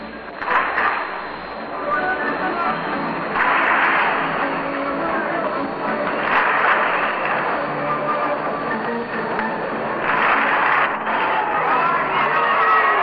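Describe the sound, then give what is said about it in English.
Ballpark organ music, hand-clapping music supplied by Gladys Goodings, plays beneath a large, steady crowd murmur at a Brooklyn versus Chicago baseball game, with swells of cheering rising and falling throughout; the sound is dense, like a packed stadium. “Gladys Goodings has supplied us with a little hand-clapping music.”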